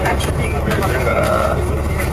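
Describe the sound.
A steady, droning engine rumble fills the inside of a moving bus, continuous and fairly loud throughout, with some muffled, indistinct voices in the background.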